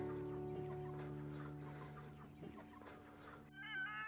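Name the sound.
chickens clucking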